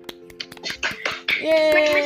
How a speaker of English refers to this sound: So let's all give ourselves a round of applause again for making, oh, where we can hear you, unmute.